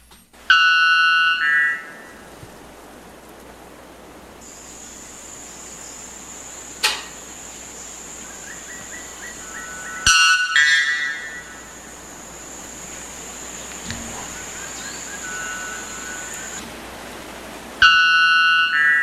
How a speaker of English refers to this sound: Okay, that's enough of the white bell bird. I just thought it would be interesting to know what the loudest bird in the world is. And that is. It doesn't even, to me, I thought it sounded more electronic or something.